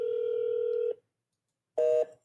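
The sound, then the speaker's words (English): Telephone keypad tones while calling a number that nobody answers: a long steady tone held for about a second, a pause of silence, then a short crisp dual-tone beep and the start of another, clear with no talking. “So nobody answers the phone.”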